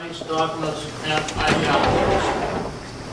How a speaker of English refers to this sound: You can hear people shuffling around, doors swinging, as they head across the street. I knew something had happened, because they don't usually just run off in the middle of someone speaking.